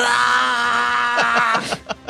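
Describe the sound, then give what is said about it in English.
A voice lets out a loud, sustained scream imitating a battle cry, holding a strained tone for over a second before breaking into a few choppy yells. “But through the smoke and the flames of the grenade, they charge through with their dashko above their head, screaming a battle cry as they run straight towards the guy behind that box.”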